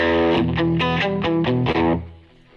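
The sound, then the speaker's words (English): A distorted Stratocaster electric guitar plays a quick run of bright, harmonically rich notes in a steady rhythm, loud, then the last note rings out and fades. “I love strats. The five-way switch. You can get so many cool tones.”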